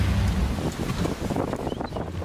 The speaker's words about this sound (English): Being on the mothership is quite noisy. Like, you've always got engine noise in the background, the sound of the waves, and then obviously the first rescue boats with their outboard motors. It is a noisy environment